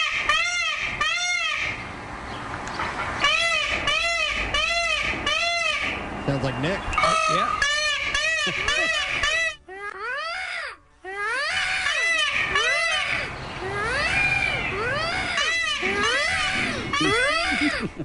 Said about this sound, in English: mating call on his cell phone, successfully luring the bird into a fenced yard